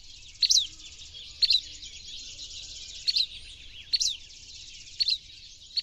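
A buff-breasted flycatcher gives short, sharp chip calls about once a second, six in all, clear over a steady high insect-like hiss and faint low rumble.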